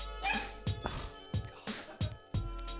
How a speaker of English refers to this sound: she's going to have to edit out so many dog barks. I can't play with you right now, dude. I literally can't walk. I'm sorry. And you can't just sit there and bark at me. It's not fair.